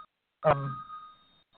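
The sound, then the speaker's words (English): A phone in the room gives a single electronic beep, a bright ringing tone that starts sharply and fades over about a second, heard clearly in an otherwise quiet space. “I forget to turn off my phone.”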